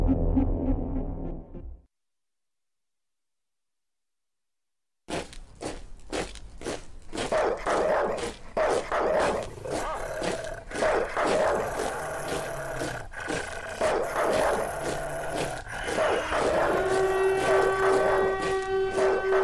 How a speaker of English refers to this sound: It's time for barking dogs, because this is tyranny.